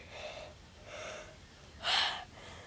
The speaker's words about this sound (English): Yawns.